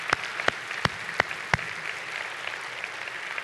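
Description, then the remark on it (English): An audience applauds as a clap offering to the Lord, a dense, steady wash of clapping, with five sharp, louder claps standing out at an even rhythm over the first second and a half. No voices are heard. “Let's give the Lord a clap offering, would you?”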